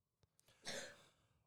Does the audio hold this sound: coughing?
yes